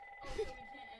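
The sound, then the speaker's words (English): A house landline phone rings once in a short burst over a low room hum with no talking. “When does the house phone ever ring?”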